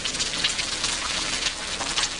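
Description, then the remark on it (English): Steady, bright crackling and hissing of an egg sizzling in a hot frying pan, with dense popping spatter at an even loudness and no voices. “In the 1980s, when it came to teens and drug use, cracking an egg into a sizzling frying pan was the most common point of reference for drugs' impact on the brain.”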